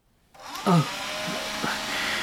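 A leaf blower starts up abruptly and keeps running, a loud, steady roar of rushing air with a whining motor tone that holds constant throughout.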